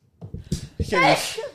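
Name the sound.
sneeze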